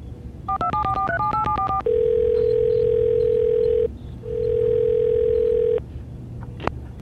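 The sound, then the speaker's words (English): A quick run of touch-tone keypad beeps as a call is placed to a special effects department, followed by two long, steady telephone ringing tones separated by a short pause, loud, with no one speaking. “give me the SC department on the phone.”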